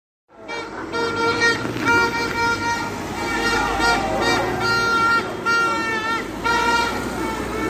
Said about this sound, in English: The Hartlepool team bus is just arriving. As you can hear, they're being greeted by the fans who are lining the streets here.